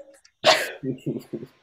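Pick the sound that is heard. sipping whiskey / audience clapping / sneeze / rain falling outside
sneeze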